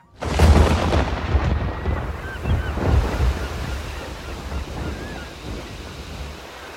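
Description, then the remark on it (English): Heavy surf crashes and churns against a boat at sea in a storm while strong wind roars over it, a loud, continuous stormy wash with a big surge near the start and rolling swells after, no voices present. “My mentor had found the storm he sought, and the eyes of Manann were upon me.”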